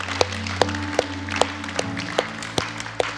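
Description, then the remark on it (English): An audience claps together in a steady rhythm, about eight sharp claps roughly two and a half per second, over a sustained low musical drone. “You know, clapping in the Bible is I guess you could say a way to say amen, but it's a way to agree.”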